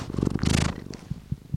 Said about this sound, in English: Hank is a gray and white tabby cat, a little on the heavy side and not much of a meower. But he does purr a little bit and is very interested in the microphone in front of his person.